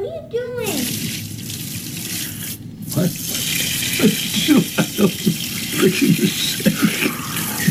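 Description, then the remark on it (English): Water runs from a leaking sink tap that is being fixed, a steady rush of water that continues throughout, spilling water onto the floor, while several voices talk over it. “We're fixing the sink. It leaks.”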